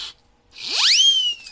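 A whistle sound effect: a brief hiss, a short pause, then a single loud tone that glides swiftly upward from low to high pitch before leveling off and drooping slightly.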